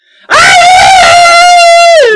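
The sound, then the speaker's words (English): A loud, sustained human scream, performed by a player, erupts abruptly and holds a high, shrill pitch for about two seconds before dropping off at the end, piercing, with no other sounds around it. “And all of a sudden, you guys hear a blood-curdling scream.”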